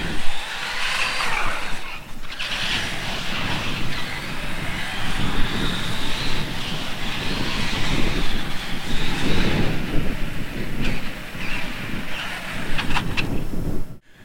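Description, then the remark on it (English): A remote-controlled car, driven using a Wii remote, has a motor that whines steadily. Its buzzing pitch rises and falls as it drives for about fourteen seconds, then cuts off abruptly. No voices are heard. “And how you're going to use different inputs to control the car.”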